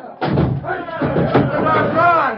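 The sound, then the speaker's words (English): A jail door is battered by a mob with heavy, booming blows, about three irregular thuds, while the angry crowd shouts and yells loudly over the pounding. “Hey, Sheriff, that door's getting away.”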